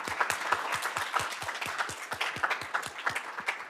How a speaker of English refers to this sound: So just wanted to quickly give them a round of applause for all of the support throughout the year.